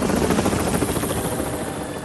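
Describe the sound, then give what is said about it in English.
The rotor of Harold the helicopter thumps steadily and loudly as it comes closer to a mine, a dense chopping roar filling the whole clip with no voices. “Down in the mine, Thomas could hear Harold the helicopter getting closer.”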